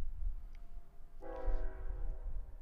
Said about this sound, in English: We've got a train.